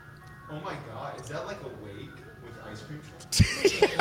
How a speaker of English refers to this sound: Oh my God! Is that like a wake with ice cream trucks? It's a wake with ice cream trucks.